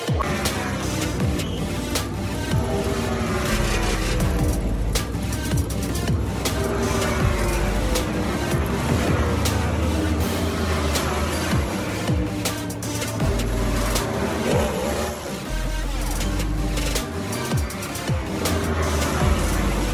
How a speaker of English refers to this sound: Ready to start. Start your engines. You're about to hear that in a minute.